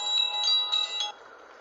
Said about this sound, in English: Again with the chimes.